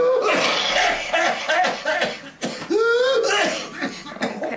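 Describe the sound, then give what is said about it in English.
An example of whooping cough found online: a rapid string of harsh coughs, broken by a loud, drawn-out, high-pitched whooping gasp on the inhale, then another burst of hacking coughs. “I'd never heard someone with whooping cough. I found an example online.”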